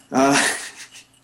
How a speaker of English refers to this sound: Is it a dog? Yes, it is.